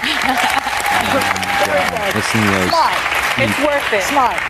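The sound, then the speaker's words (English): Loud, steady studio audience applause lasting several seconds, with voices talking and calling out over the clapping throughout. “Clap if you had your third booster.”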